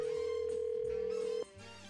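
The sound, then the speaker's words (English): A single steady electronic phone ringing tone sounds clearly for about a second and a half as an outgoing call is dialed, then cuts off, leaving a faint low background hum on the line. “So we're going to find out if that speeding scared her a little bit here as we dial her up”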